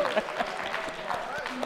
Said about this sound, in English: Y'all can clap for that, please.